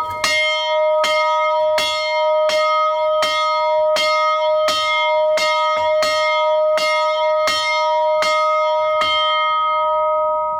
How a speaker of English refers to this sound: And boys and girls, that is the famous college bell.